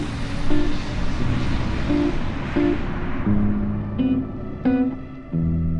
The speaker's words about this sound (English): It's like playing Frogger. Like, you're literally like trying to get in between diesel trucks. How can you tell someone, like a youth, to go out there and ride their bike when there's diesel trucks on the road continuously?